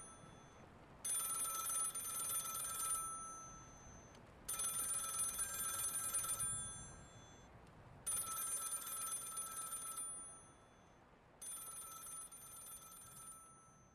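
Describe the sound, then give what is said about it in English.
An old-fashioned telephone bell rings loudly, four long metallic bursts of about two seconds each, separated by short pauses, with no voices present. “But before she could move, the phone began to ring.”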